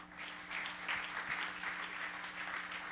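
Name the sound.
audience clapping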